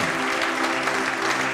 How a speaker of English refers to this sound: Give the Lord a rousing clap in the house tonight.